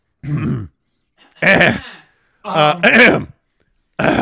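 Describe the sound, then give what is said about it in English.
A loud voice clears its throat in several rough, guttural bursts separated by short pauses, ending with one more hack at the close. “No, I have to clear my throat.”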